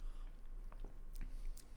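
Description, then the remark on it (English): A quiet sip of beer followed by swallowing, heard as a few soft, wet mouth clicks and gulps spread over a couple of seconds, with no talking. “I'll do one more sip.”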